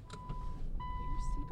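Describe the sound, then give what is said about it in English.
A car's power windows whir closed with a steady electric motor hum over low rumble, lasting a second or so, with faint talking in the background. “You ready to hotbox this car?”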